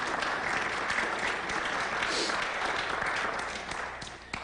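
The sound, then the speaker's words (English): Steady applause from an audience, dense clapping filling the whole stretch at an even loudness, tapering only slightly near the end. “You can't applaud him, though.”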